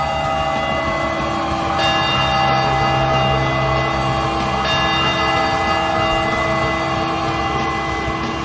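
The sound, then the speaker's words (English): Loud, resonant bells ring continuously to celebrate a Padres baseball win, a series sweep, their overlapping tones sustaining through the whole stretch, with two fresh strikes renewing the clang partway through. No voices are heard. “can we get some Padres wind bells in the chat to celebrate this glorious win, Friar Faithful?”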